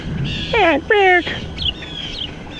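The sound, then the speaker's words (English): Outdoors, two loud, clear bird calls ring out back to back, followed by a few fainter, higher chirps against steady background noise. Nobody speaks. “And even now, hey, I'm here, I'm walking around, I'm trying to do the whole, you know, walk and talk, and there's birds.”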